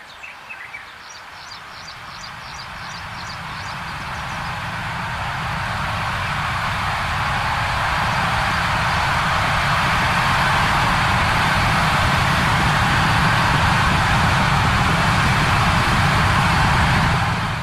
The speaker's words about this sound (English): playing the death whistle.